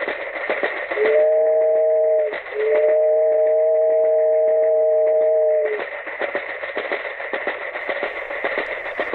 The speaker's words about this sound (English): The little train rumbled over the tracks. She was a happy little train, for she had such a jolly load to carry. Her cars were full of good things for boys and girls.